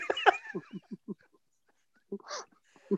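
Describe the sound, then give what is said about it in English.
A dog barks during a storm at night in a quick run of short, muffled woofs, pauses, then lets out a few more scattered barks, sounding fairly quiet. “There's a storm tonight, so you might hear my dog barking in the background.”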